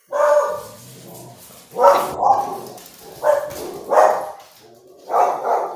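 Dogs bark loudly at a neighbor in a run of sharp, insistent barks, about five or six over a few seconds, coming in irregular bursts with no talking.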